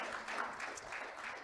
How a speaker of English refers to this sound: If you believe that, clap your hands and shout amen in the building.